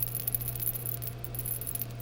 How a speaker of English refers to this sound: I just swirled around our little hot molten piece of rock glass there. And I'll set it down to cool. And because it was so hot, and it's cooling down to room temperature now, sometimes it'll just crack on its own.